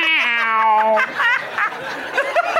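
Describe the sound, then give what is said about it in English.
A person's voice imitates a single long, drawn-out meow of an older, tired cat, loud, then dissolves into breathy chuckling and laughter. “…'s older, tired cat voice.”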